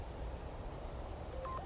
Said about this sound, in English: Oh, there we go. That's the sound of the text message. The wild text message.